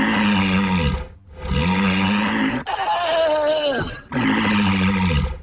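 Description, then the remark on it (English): Walruses roaring: four long, loud, rough bellows follow one another almost without pause, deep and groaning, with the third call rising to a higher, strained pitch. No one speaks. “You want to hear the sound of the walruses that, one more time?”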